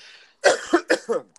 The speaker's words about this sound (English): I am near about coming to tears trying to hold this cough back.